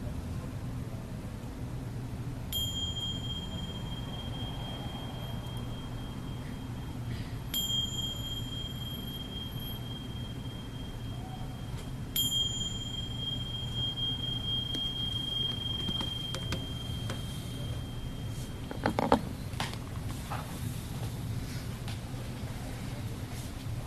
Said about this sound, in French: Si on veut, quand la cloche va sonner, on peut redevenir absolument habituel et blasé, ou on peut rester, demeurer un peu curieux.